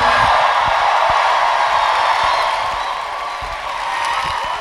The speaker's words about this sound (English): Play us out. Don't stop clapping, we haven't left.